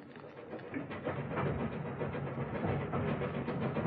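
A steam train rumbles steadily along the rails, a dense, continuous clatter with faint rhythmic beats running through it, even in loudness throughout, with no voices.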